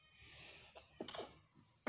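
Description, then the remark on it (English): A single sneeze bursts out, a quick sharp gasp then a hissy, breathy blast, with soft background hiss around it and a sudden loud thump right at the end. “Excuse me, I just sneezed.”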